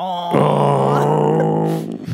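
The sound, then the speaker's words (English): A voice imitates a car driving away with a sustained, buzzing low drone that holds steady for about a second and a half before trailing off, fairly loud and alone. “Sounds like a car driving away.”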